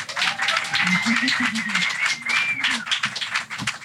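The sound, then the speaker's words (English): An audience at a storytelling event applauds to welcome the next storyteller, dense, steady clapping for a few seconds, while a voice and a high, sustained cheer or whistle rise above the clapping. “So let's start the applause and welcome your next storyteller”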